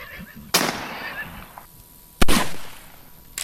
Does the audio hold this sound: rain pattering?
no